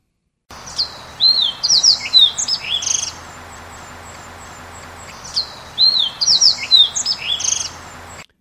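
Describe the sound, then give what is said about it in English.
Fox sparrow song, two rich bursts of sliding whistles and buzzy notes about five seconds apart, clear against a quiet background hiss. “And next is the fox sparrow, where you will want to listen for the sliding whistles that are in there.”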